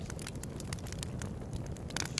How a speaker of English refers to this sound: I now take you back to your regularly scheduled campfire.